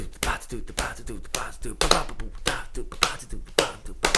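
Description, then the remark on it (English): A train beat tapped out by hand as a 16th-note pattern: a fast, steady stream of dry percussive hits, the right hand alternating soft and loud with the left hand intermittent, keeping a driving rhythm for a few seconds. “Yeah, okay, and that perfectly segues into my one, the train beat.”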